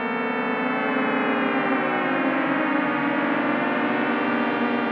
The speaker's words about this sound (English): And here's a couple of them together. You can start to see how this could all add up into a gentle, teeming cluster of tones.